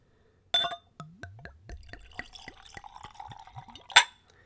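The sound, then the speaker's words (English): A bright glass clink, then a clear liqueur glugs from a bottle into a clean Glencairn tasting glass, poured neat at room temperature with no ice, in quick bubbly gulps for about three seconds, ending with another sharp clink. Fairly quiet, no talking. “And I'm using a clean Glencairn glass. It's a nice glass for tasting. So here we go. Let's go for a pour.”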